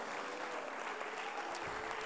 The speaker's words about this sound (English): Come on, clap your hands unto Jesus right now.